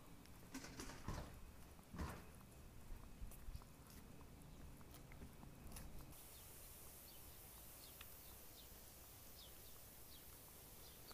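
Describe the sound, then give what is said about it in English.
Faint birds chirp in scattered short notes in the morning over a soft outdoor hiss, with a few crunchy footsteps early on and no one talking. “Hear the birds chirping.”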